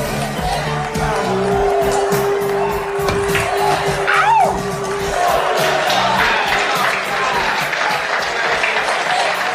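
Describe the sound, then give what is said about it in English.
A crowd claps and cheers steadily throughout as Cruise vamps around a table swinging a stick like a samurai sword, with scattered whoops and shouts rising above the dense applause, including a sharp rising whoop near the middle. “Everyone's watching and cheering as Cruise is just vamping around the table, swinging his stick around as if it's a samurai sword between shots, acting out the lyrics of the song, and constantly flashing that big, toothy Cruise smile.”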